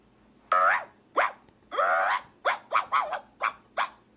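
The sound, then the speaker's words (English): A human voice imitates a small chihuahua's yappy barking, about nine sharp, high-pitched yips in an uneven burst, fairly loud with no other talk. “They said, "That's my chihuahua bark.”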